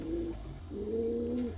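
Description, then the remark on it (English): A small pet sparrow, Piafou, calls twice, a short low cooing note followed by a longer, wavering one, with no talking and a faint steady hum underneath. “Qu'est-ce qu'il y a, Piafou? What's the matter, little sparrow?”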